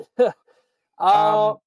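A burp or fart sounds up close: a short grunt-like burst, then a brief pause and a longer, loud, rumbling one lasting about half a second.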